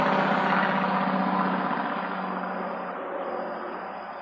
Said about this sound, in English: Big ass truck.